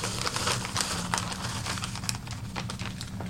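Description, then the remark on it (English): Dry scone mix poured from an opened package into a bowl for a waffle recipe: a steady, soft rustling hiss with scattered crinkly ticks, running about three seconds over a low, constant background hum. “Dump it in the bowl.”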